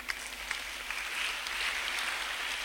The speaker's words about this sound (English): I think as you are clapping, God is deciding to do one for you.